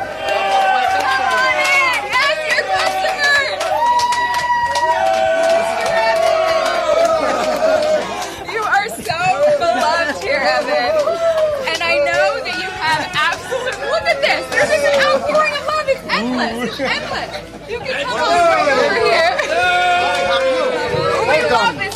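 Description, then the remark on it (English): A large crowd of loved ones and community members chatters and calls out together, a loud, continuous babble of many overlapping voices that stays steady throughout with occasional brighter shouts rising above the hubbub. “And look at this amazing crowd.”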